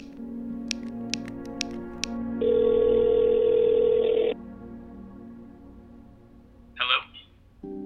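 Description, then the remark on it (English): A few quick keypad taps on a phone set to speaker, then a single steady ringback tone lasting about two seconds through the small phone speaker, followed by a brief click as the line connects. No one speaks. “Let me use your phone. I'll put it on speaker.”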